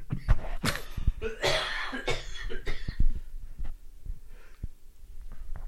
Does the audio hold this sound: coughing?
yes